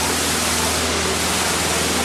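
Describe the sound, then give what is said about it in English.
A waterfall's rushing water, heard from behind the falling water, roars steadily and loudly, a dense continuous wash of sound with no pauses and no voices over it. “Hey, if you have a camera, this is a wonderful photo opportunity, something many people never, ever, ever get to see. The backside of water.”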